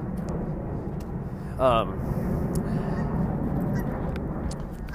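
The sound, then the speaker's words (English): A loud, steady low roar of an airplane flying overhead fills the whole clip, with a brief honk-like tonal burst about a third of the way in. “excuse this plane flying by, nice and loud.”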